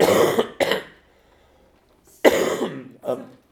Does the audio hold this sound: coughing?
yes